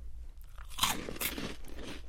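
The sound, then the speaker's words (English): Crisp crunching of bacon cheddar flavored slider chips being bitten and chewed, with two loud crackling bites followed by softer, irregular munching. No one speaks. “Do you guys want to try these bacon cheddar flavored sliders?”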